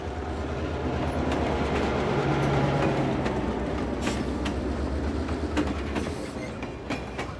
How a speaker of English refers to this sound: On the morning of August 8th, a train loaded with local furniture, clothing and electronics slowly departed from the Ganzhou International Inland Port in eastern China's Jiangxi province.